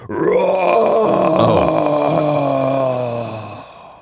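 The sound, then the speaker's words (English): A voice imitates a monster's roar: one sustained, rough, growling bellow lasting about four seconds, loud and steady before trailing off, with strained harmonics and a slight pitch wobble. No other sounds accompany it. “And all of a sudden, you hear a giant roar.”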